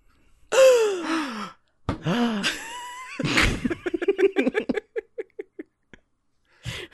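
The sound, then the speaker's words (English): Several voices deliberately let out loud, drawn-out gasps together on cue for a script, in overlapping waves, sliding in pitch, followed by a burst of breathy laughter and short chuckles that trail off. “should we all just gasp?”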